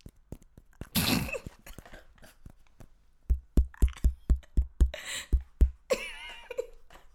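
A sharp, crisp crunch from biting into a rice cake, followed by a steady run of about ten rhythmic chewing thumps, then more brittle crackling at the end.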